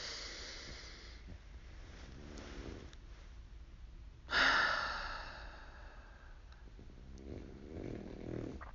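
A dog takes a single deep, audible breath, a breathy sigh-like exhale that swells and fades over about a second against quiet, low background noise. No one speaks.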